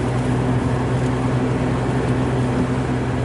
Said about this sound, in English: And now the train is slowly passing like, the van. Incredibly slowly. This is the slowest moving train.